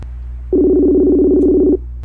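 A phone line tone sounds as a radio station places a call to a guest: one steady, buzzing ring tone holds for just over a second over a low background hum, with no voices.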